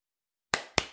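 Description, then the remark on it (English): Two sharp hand claps land about a quarter second apart after a stretch of silence, as two people with their eyes closed try to clap at the same time in an intuition test and miss by a hair. Each is a crisp, bright smack with a short ringing tail. “You have to clap at the same time.”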